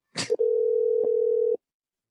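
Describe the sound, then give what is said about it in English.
A short burst of line noise, then a steady telephone dial tone holds for just over a second with a faint click partway through, and cuts off into silence, as a phone call is placed to a caller in the United States. “We skipped it last week, so I know everybody's anxious for a phone call this week.”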